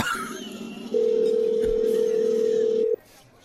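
A loud, steady telephone tone sounds for about two seconds as a call is being placed, then cuts off abruptly, over a faint low background hum.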